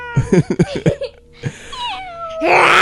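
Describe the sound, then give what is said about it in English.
A voice imitates a creaking door opening: several short throaty bursts, then a thin, squeaky tone sliding downward, ending in a rushing breathy hiss, fairly loud. “So the door opens up. That's not what it sounds like.”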